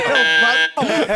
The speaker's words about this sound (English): Buzz it. No, buzz it. Let me.